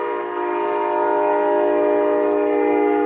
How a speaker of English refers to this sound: This train is going to interrupt me.